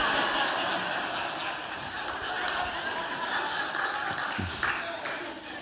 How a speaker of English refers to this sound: Guys, stop clapping. You're going to get hit. You're going to get hit when you get home.